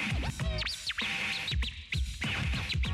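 Fast turntable scratching with sharp, swooping pitch sweeps that chirp like birdsong, repeating in quick rhythmic bursts over a steady beat, loud with no talking.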